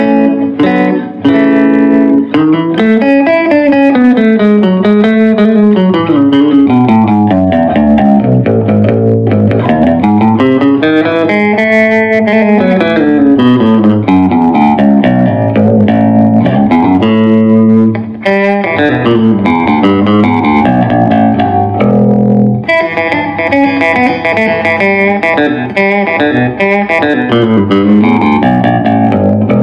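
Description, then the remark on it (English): A Danelectro baritone electric guitar plays continuously with both pickups on, loud and sustained, with a deep low end, bending melodic lines, brief pauses and restarts, and no voices. “That was both pickups.”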